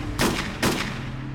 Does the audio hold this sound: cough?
no